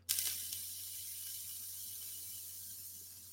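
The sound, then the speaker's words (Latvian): A steady, airy hiss of vape vapor being blown out to the side while checking where burning shows up, opening with a couple of soft clicks and holding for about three seconds before easing off slightly, over a faint low hum. “Tāpēc papūtīšu mazliet malā.”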